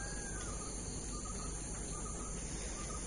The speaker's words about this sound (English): You hear the roosters? It's fun.